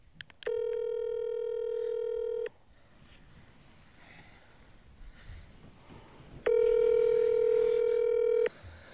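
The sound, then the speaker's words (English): A phone call ringing while waiting for either of two people to answer: two long, steady electronic ring tones, each about two seconds, separated by a pause, with faint background noise and murmuring between them. “Either of them have to answer first.”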